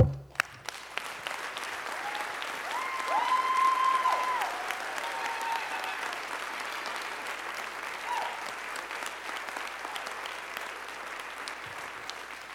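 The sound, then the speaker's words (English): An audience claps hands in praise, following Psalm 47's call to clap, in sustained, dense applause lasting over ten seconds, swelling slightly early on, with a few cheers or shouts rising above the steady clatter. “We're going to clap our hands.”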